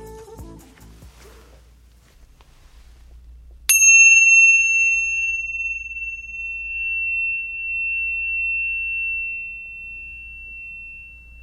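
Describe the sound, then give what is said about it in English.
A single bright chime strikes sharply after a few quiet seconds, its clear metallic tone ringing out and slowly fading over several seconds, with a low steady hum underneath. “I am loving these chimes. They are so nice.”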